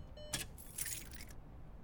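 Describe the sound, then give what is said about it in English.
A set of car keys jingles briefly in two quick bursts as they are hidden in a tire well, a sharp metallic clink followed by a longer rattling shake, soft against a quiet low rumble. “She hid the car key in her tire well, grabbed a sweatshirt from the trunk, and set off into the gaping, hungry entrance of the nature trail.”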